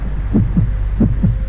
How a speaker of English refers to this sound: You are experiencing the heartbeat of a dying man.